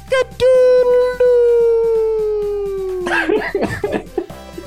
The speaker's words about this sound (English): Sunrise, if you are walking your dogs or driving to work at the moment and you've heard, heard that cockle-doodle-doo, then that is, all the more reason to wake up.